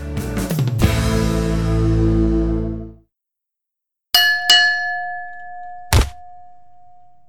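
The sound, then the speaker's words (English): A fight bell clangs several times in quick succession and rings out loudly, signaling the start of a fight, then after a brief silence a few more sharp metallic strikes follow, each leaving a lingering tone. “And now the bell is ringing, so that officially means that the fight has begun, I guess.”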